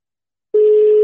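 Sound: telephone ringback tone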